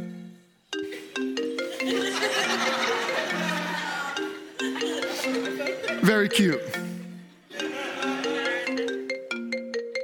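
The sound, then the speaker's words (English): A loud electronic phone alert melody of stepped tones plays in three repeating bursts over a busy background, with a voice briefly speaking partway through. “You all thought that we got a presidential alert on our phones.”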